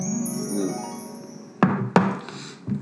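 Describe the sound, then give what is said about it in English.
Glasses knock together in a tequila toast: two sharp, hard clinks in quick succession, then a softer third tap, after a sustained high ringing tone. Nobody speaks. “Cheers. Until clink next it, time. Slam it.”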